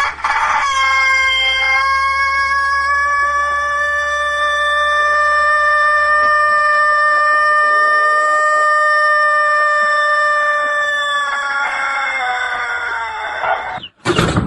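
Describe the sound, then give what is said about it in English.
A rooster crows once in a single long, drawn-out call, loud, holding its strained pitch for many seconds before breaking off abruptly, with no talking. “the rooster is just right there. He gets his own mic, and you give him the signal every time somebody scores a touchdown.”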